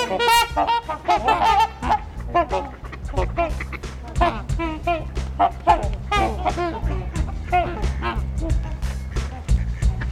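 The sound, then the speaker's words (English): A large flock of about 125 trumpeter swans, about a third of them young, honking loudly and continuously, many overlapping bugle-like calls, with a few quacks mixed into the din. “I'm thinking there's more like 125 here. Trumpeter swan.”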